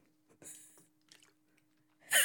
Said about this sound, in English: He swishes it around. Yeah, like fucking mouthwash. As if he was attempting to maybe clean something off the he's front like, of his teeth with water.